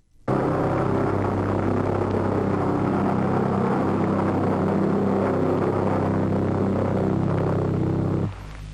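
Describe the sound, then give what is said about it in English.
The loud, rough pulse-jet engine of a flying bomb drones steadily for about eight seconds, then abruptly cuts out as the pulse jet shuts off, leaving only a quieter low rumble behind. No voices. “That's the part where the pulse jet shuts off, the automatic controls lock the fins into a steep dive, and the flying bomb drops on the unfortunate target.”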